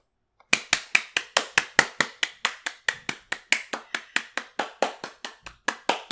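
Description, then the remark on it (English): Steady hand clapping, about two dozen sharp, crisp claps in a quick, even rhythm lasting several seconds, with no voices over it. “I was just clapping.”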